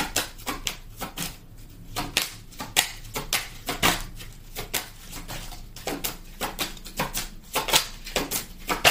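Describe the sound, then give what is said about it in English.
A deck of oracle cards being shuffled, with a steady run of crisp flicks and papery slaps at an uneven rhythm, with no one speaking. “This card came out during the pre-shuffle.”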